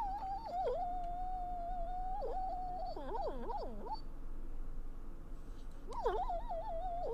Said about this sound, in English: Just a dog dreaming. Yep. He do be sleeping though. He be crashing hard.